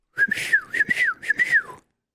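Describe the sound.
A person whistles an imitation of a bird call: a series of short, warbling phrases that swoop up and down in pitch, breathy and fairly loud, with no talking.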